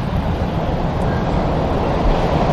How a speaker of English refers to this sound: You can hear the tube.